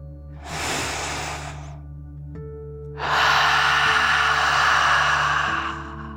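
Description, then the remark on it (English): A deep relaxing 'dragon breath' drawn in through the nose, filling the lungs, a brief pause, then a longer, louder, breathy exhale out through the mouth, over a soft steady tonal hum in the background. “Breathe in through your nose, filling up your lungs, and then out through your mouth, pretending you are breathing fire, like a dragon.”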